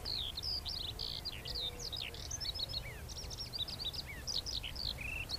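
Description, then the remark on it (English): A skylark sings continuously in flight from high overhead as it climbs in the Cotswold Hills, a rapid, unbroken stream of shrill chirps, trills and warbles over a low outdoor rumble of wind. “A quest for skylark song in the Cotswold Hills”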